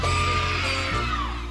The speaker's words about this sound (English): You wax rhapsodic in the book about the scream. It is an ugly sound, always has been.